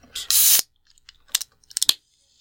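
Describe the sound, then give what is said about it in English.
A can of citrus hoppy IPA with a grapefruit edge cracks open with a sharp pop and a loud burst of fizzing hiss lasting about half a second, followed by a few quieter metallic clicks and rattles. “It's their citrus hoppy IPA. Let's crack that open.”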